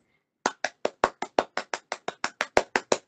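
A single pair of hands claps about fourteen times in a quick, steady rhythm, each clap sharp and fairly loud, with no talking over it.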